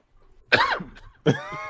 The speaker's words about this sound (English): I'm just saying, see, like, they already got me coughing and shit.